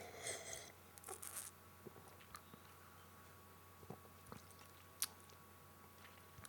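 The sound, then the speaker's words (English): Quiet sips of a dry-hopped sour beer: a couple of soft slurping draws early on, then scattered small mouth clicks and a swallow against a low background hum, with no talking. “Let me have another sip.”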